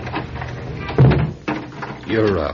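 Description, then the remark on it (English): A front door swings shut with a single solid thud, with brief murmured voices just before and after. “Don't you think we better close the front door?”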